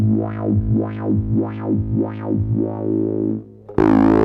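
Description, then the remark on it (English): A sustained synth bass note with its filter sweep depth set fully negative, sweeping steadily up and down about five times, then briefly thinning before snapping abruptly into a bright, buzzy open tone at the end as the setting is switched. “Here's depth negative all the way. I'll switch back and forth. You can hear the wave change where you go through center.”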